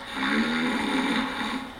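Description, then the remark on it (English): A husband snores in his sleep beside his spouse, one long, steady rasping breath with a low buzzing drone and a harsh, airy texture that holds its loudness throughout; a track on a novelty CD of husband sounds. “Him sleeping next to you.”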